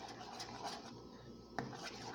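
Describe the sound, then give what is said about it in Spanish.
A spoon constantly stirs a cooking mixture in a glass vessel during pasteurization, giving a steady scraping swish with a rhythmic pulse and one sharper clink near the end. No one speaks. “Removemos nuestra mezcla constantemente para evitar que vaya hirviendo, ya que si dejo de moverla constantemente, podemos ver que busca manera de romper el vidrio.”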